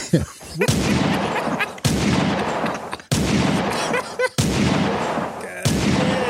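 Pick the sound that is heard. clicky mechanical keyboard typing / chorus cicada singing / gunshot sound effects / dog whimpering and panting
gunshot sound effects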